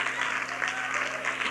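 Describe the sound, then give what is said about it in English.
An audience at a church service claps to the Lord in a steady, dense burst of applause, loud and continuous with a faint crowd murmur beneath, no single voice standing out. “Clap again and shout with your voice to the Lord.”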